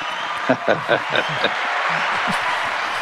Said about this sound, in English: being the final episode of the year, should we go with the canned applause?